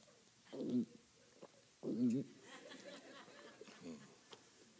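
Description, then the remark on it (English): Two short, low gurgling gulps made with the mouth, a voice imitating swallowing, separated by about a second, with faint background murmur between them. “That was a fake gulp, okay?”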